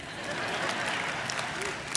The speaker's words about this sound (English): Well, and if you're online, how about a round of applause for everyone who's in here?